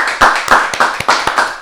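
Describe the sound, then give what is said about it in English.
Hands clap in a quick, steady rhythm, about seven sharp claps in under two seconds, loud with no voices over them, clapped as a shout-out for Majestic Meese. “Hey, clap it off for Majestic Meese, man.”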